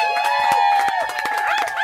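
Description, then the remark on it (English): Another round of applause, a loud burst with scattered sharp claps and sustained cheering or whistle-like tones running over it, steady and continuous throughout. “Can I get another round of applause?”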